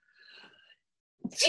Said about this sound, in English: Bless you. Woo! Never less than three, never more than nine. Been that way since I was a kid.